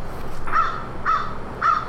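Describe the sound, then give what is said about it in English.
A bird calls three times in a steady rhythm, each harsh, cawing note loud and about half a second apart, over a low rumbling background with no talking. “Nuh-uh, the bird's like, I'm single.”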